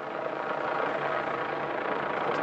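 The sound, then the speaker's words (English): A steady, droning engine roar from a police helicopter passing overhead, guarding a nuclear waste transport through France and Germany; continuous and fairly loud throughout with no pauses, and no voices. “As the nuclear waste transport winds its way through France and Germany, it is protected from above by police helicopters.”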